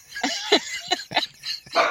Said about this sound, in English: I hear the dogs. But I know he's not on mute.